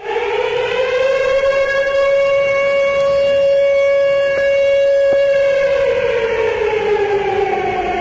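A loud, wailing civil-defense siren holds a steady, sustained tone with rich overtones, swelling up at the start and sliding down near the end, with no voices.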